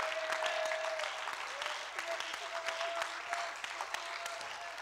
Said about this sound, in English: Somebody clap your hands if you agree with me tonight.